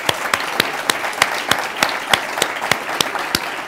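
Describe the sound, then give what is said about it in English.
A City Club audience applauds the president and CEO of the Downtown Cleveland Alliance after his first State of Downtown Cleveland address: a dense wash of many hands clapping, punctuated by sharp, regular individual claps roughly three times a second, fairly loud throughout with no voices. “All right, give him a round of applause, please, ladies and gentlemen.”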